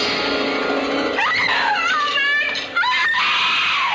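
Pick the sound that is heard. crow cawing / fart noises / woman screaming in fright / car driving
woman screaming in fright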